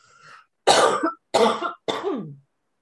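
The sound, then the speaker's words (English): A soft throat-clearing rasp, then three loud, harsh coughs in quick succession, the last one trailing off with a falling, voiced tone. No one speaks. “I have a little frog in my throat.”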